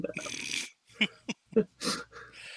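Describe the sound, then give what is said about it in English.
A dog, Matilda, whines for pizza in a few short, uneven bursts, with high-pitched whimpers mixed with snuffling breaths and soft snorts. “Yep, she's crying because she wants my pizza.”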